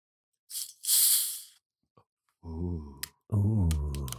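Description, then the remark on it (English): A can of seasonal soda cracks open near the microphone with a brief, bright fizzing hiss that lasts about a second, followed after a pause by someone's drawn-out voiced exclamations. “You got to open it up near the mic. We got to hear that fizz.”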